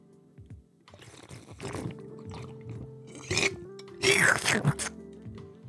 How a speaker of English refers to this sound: There you go. I just won over 25% of Joe Rogan's audience by doing that slurp.